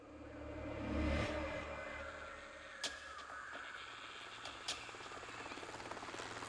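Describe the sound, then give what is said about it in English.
A helicopter lands gently in grass in Vietnam in January 1970; its rotor drones steadily, swelling loudest early on, then settling into a lower, continuous thrum with a couple of sharp clicks. “The mission began as the helicopter landed gently in the grass.”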